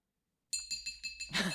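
Glasses clink together to make a couple kiss, in a quick series of bright, ringing taps, about five strikes in rhythm, ending in a fuller, busier jingle as several glasses touch at once.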